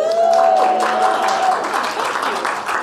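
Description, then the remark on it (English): A crowd applauds steadily for a few seconds at the show Vicky's World, dense clapping at a fairly loud level, with a faint sustained tone, faded out using a phone, at the start. “That applause has given me everything I need, so good night.”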